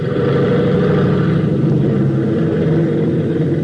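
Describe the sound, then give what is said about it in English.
The engine of a Conestoga airplane revs during a tune-up with a loud, steady, rumbling drone and layered humming tones, holding an even roar throughout with no voices. “Rev up again.”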